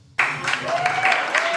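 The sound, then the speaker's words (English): The studio audience of the Movies and Booze radio show on News Talk bursts into applause all at once, a dense, steady wash of many hands clapping that holds for over a second, with a few voices mixed in. “They're clapping now.”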